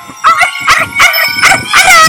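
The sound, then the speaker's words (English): A dog barks and howls, about five loud, strained yelps in quick, steady succession with a whining, pitched quality, no talking over it. “Oh, she's a dog cat. She's a cat dog.”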